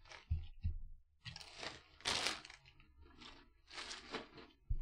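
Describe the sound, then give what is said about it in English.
Crinkly packaging of chicken nugget flavoured chips is rustled and crunched in several uneven bursts, bright and crackly, with a couple of low thumps at the start and no talking. “I'm just rustling.”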